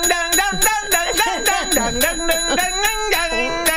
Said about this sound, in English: Oh, God, this is going to get a lot of bells.